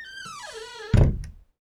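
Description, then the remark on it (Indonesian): A door swings shut with a creaking hinge whose pitch slides downward, ending in one solid thud that fades quickly into silence. “Saya nak tutup pintu sekarang.”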